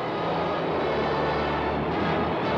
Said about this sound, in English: Flying at 1,000 feet, he pilots his straining plane over the channel at 40 miles an hour, detouring from the route of the original flight to cross the white cliffs of Dover.